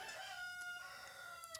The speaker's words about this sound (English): I'm going to go kill that rooster real quick. I'll be right back.